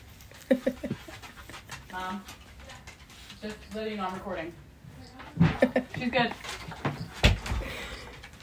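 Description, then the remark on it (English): A person closes their door, pushing it shut with a couple of solid thuds, following some quiet talking and soft breathy panting. “I'm going to close my door.”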